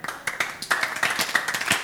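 A crowd clapping in a fast, steady rhythm, with many hands striking sharply and close together, loud and sustained throughout with no voices over it.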